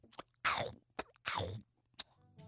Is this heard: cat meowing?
no